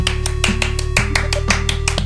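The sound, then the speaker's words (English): A quick, steady run of sharp hand claps, roughly ten evenly spaced crisp slaps in two seconds, over a sustained low droning tone. No one speaks. “Separate claps for everybody.”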